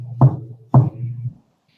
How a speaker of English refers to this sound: And you wake up to a knock at the back of the caravan. But isn't it moving?